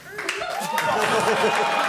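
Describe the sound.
A live audience applauds in a steady, dense wash of clapping that stays at an even level throughout, with crowd voices and cheers mixed in.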